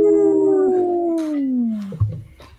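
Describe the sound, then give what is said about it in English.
A person imitates a werewolf howl: one long, loud, wavering note held for about two seconds and sliding downward, followed by a brief burst of breathy noise. “Will anybody be left to escape the maddening sounds of the howling?”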